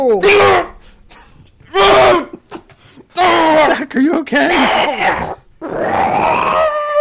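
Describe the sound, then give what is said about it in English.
A person howls and growls like a wolf in several loud bursts, the pitch sliding and wavering between them, with a brief spoken question in the middle. “Is that those wolves outside”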